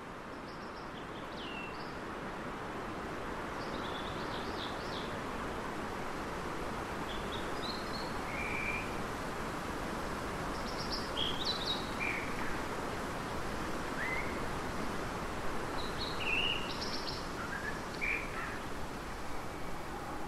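A steady, broad rushing roar of a far-off river that drains the rainforest, echoing off the far side of the valley, with scattered high bird chirps and short calls sounding over it throughout.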